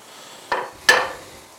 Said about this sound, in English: A plate full of onion. God, look at this. Into the pan. Pow.